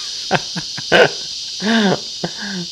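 A steady, shrill cicada buzz drones continuously in the background, with a few short, sharp calls and a brief wavering whine breaking over it.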